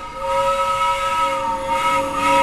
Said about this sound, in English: pulled on the train whistle.